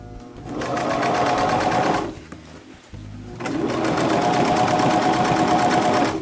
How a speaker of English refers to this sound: Yeah, I've repaired quite a few pairs of my pants. It just saves you money, you know? And we had a sewing machine, so.